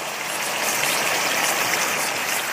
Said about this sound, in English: The pork is going into the pan. Oh, yeah, that's sizzling. You recall that sizzling. The pork is sizzling in the pan.